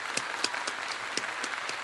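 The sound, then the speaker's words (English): A short burst of steady crowd applause, a dense hiss of many hands clapping with a few sharper individual claps standing out, at a moderate, even level with no voices. “Hold for applause.”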